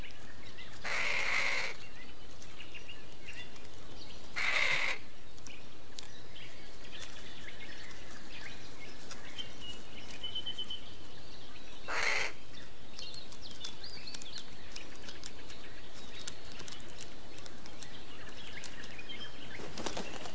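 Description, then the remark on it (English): Three brief bursts of wings flapping from a younger bird and an experienced adult bird, spaced several seconds apart, against a quiet outdoor background with a faint high chirp now and then. “A younger bird joins an experienced adult to see how things are done.”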